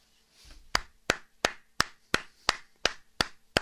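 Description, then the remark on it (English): A single pair of hands claps about nine times in a steady, even rhythm, each clap sharp and fairly loud, with no voices heard. “Am I not allowed to applaud BlackRock?”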